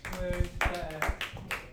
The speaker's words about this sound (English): For the listener at home, there was a tepid applause for our second guest.